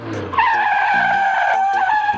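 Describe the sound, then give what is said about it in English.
Car tires screech in one loud, sustained, high-pitched squeal lasting about two seconds as a car turns fast, following a brief low engine rumble at the start. “And when you put a diphthong in the middle of a tongue twister, it's kind of like turning your car when you're going really fast.”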